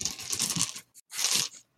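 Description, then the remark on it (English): Rummaging through a pile of dice to find a four-sided die (d4): two bursts of dense plastic clattering and rattling with a brief pause between, no voices. “Well, I need to dig out a d4.”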